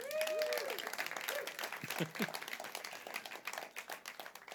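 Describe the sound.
A burst of steady audience applause, many hands clapping in a dense, even patter, with brief vocal cheers and a voice rising over the clapping near the start, as a live audience applauds the speaker's wife.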